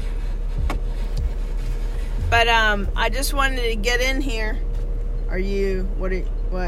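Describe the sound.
A parked car's engine idles with a steady, low rumbling hum that continues unchanged throughout, while a person speaks over it.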